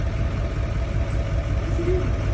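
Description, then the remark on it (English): A lifted truck's engine idles steadily, a continuous low, throaty rumble that holds even throughout with no voices over it, as the truck is used to pop a man's dislocated toe back into place. “Is a dislocated toe, and he's having this dude on a lifted truck pop his toe back into place with his truck.”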